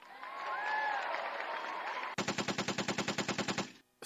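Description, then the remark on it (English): A loud crowd cheers and whistles for about two seconds, then the noise gives way to a rapid, evenly spaced burst of sharp cracks, like machine-gun fire, before cutting off. “Let me hear a cheer.”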